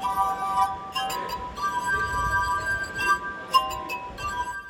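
A glass harp plays sustained, ringing tones as fingers rub the rims of different sized, water-filled stemmed drinking glasses, several pure pitches overlapping in a slow melody with soft breathy swells, moderately loud.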